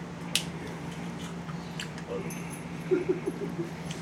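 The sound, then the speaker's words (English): A dog lets out a few short, soft whimpers indoors, clustered near the end, over a steady low room hum with a brief sharp click early on. “Yeah, I don't think you can feed dogs candy.”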